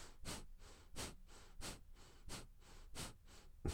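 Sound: imitated heavy breathing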